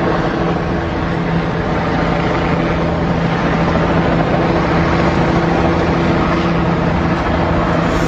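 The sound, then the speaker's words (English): A loud, steady mechanical drone of helicopters flying overhead, a constant engine hum with a low tonal whine and broad rushing noise that holds without a break throughout, with no talking. “More and more helicopters.”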